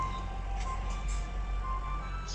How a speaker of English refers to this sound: Big freezer truck passing behind me. Big refrigerated truck, probably delivering stock to this Midvale Woolworths.